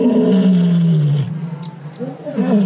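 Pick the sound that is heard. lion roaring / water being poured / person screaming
lion roaring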